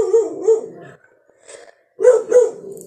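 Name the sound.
dogs barking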